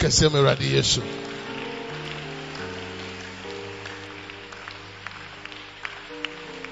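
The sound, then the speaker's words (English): An audience claps for God over sustained keyboard chords. The clapping is loudest and densest in the first second, then thins to scattered, irregular claps beneath the held tones. “Your clapping is good.”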